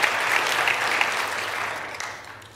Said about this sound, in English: And, amen. You're free. Clap.